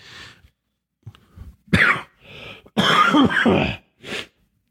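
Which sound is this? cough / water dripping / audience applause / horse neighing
cough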